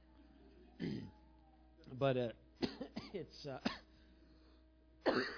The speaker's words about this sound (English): Pray for me, I'm having that smoker's cough. I don't smoke